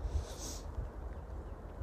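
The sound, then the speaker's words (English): A single short nasal sniff from someone with a cold, a brief airy hiss near the start, set against a steady low rumble and breathy background noise, with no talking. “I'm sniffing a bit at the second, because I'm on day 4 of a cold.”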